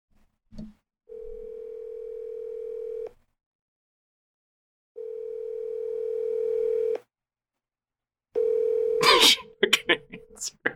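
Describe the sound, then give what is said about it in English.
An outgoing call's ringback tone: three steady two-second buzzing rings separated by pauses, the last one cut short as the line picks up with a clattering burst and a brief voice. “we're going to see if she actually answers her phone.”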